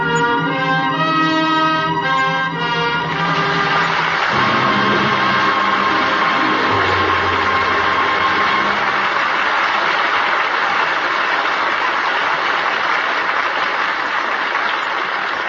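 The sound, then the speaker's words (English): An orchestral chord fades out in the first few seconds. Loud, steady applause from a large audience then swells and continues evenly to the end, with no voices. The applause closes a performance of Anna and the King of Siam starring Irene Dunn and Rex Harrison. “That well-deserved applause invites a curtain call.”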